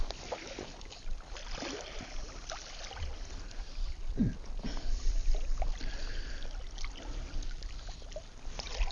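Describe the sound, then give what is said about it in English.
Water splashes and sloshes around huge rocks near a beach, a steady irregular churning with occasional sharper slaps, continuous throughout and without any voices. “Just working my way along here, as you can hear now, I'm going in between some huge rocks where the water's just splashing around here, so I just have to move myself a bit towards the beach.”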